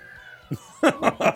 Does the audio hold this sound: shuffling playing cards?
no